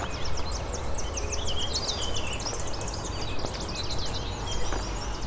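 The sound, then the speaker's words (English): A Tennessee warbler sings rapid, high-pitched chips and trills in fast bursts across the whole stretch, set against a steady outdoor hiss with other faint bird calls around it. “Coming up on the Tennessee warbler again.”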